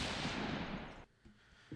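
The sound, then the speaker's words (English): Fireworks go off in a long, dense burst of booming crackle for about a second, then cut out, leaving two smaller, fainter pops trailing after. “We had some loud fireworks, Gavin, didn't we?”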